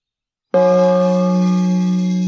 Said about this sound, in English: I have a brass gong I bang.